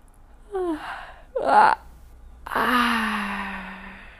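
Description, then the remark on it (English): A drawn-out, deliberate yawn done as a stretching exercise: a couple of short breathy vocal sounds and a sharp inhale through a wide mouth, then a long exaggerated yawn whose voiced tone slides downward and fades over nearly two seconds. “Here, yawning is encouraged.”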